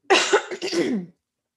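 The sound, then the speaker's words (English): A single loud throat clearing, a rough, voiced rasp broken into two or three quick pushes over about a second, then silence. “Let me clear my throat.”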